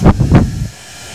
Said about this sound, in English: You hear that? That is a hairdryer. What do you do with a hairdryer? Because we're in the bathroom right now. Usually you use a hairdryer to blow dry your hair. Hairdryers make things dry.